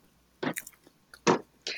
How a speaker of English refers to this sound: Oh, you're eating? eating zombie Takis because you're gross.